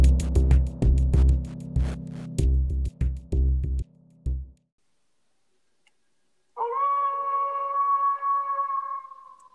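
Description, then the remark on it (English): A short burst of heavy rhythmic thumping stops, and after a pause a single long, steady wolf howl rises and holds, loud, with no talking. “That's the fourth Howling Wolf this episode.”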